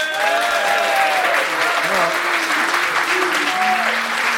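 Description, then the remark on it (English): Loud, sustained applause from an audience voting on whether to have Van Persie back fills the whole stretch, a dense wash of clapping with cheers and voices riding over it throughout. “By applause, would you have Van Persie back?”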